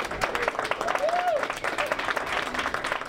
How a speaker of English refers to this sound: It was late one evening in the Missouri Capitol in May 2018. The halls were quiet. Most lawmakers and staff had locked their offices and went home for the night. But down in the basement, cheers and tears of joy erupted from a House hearing room.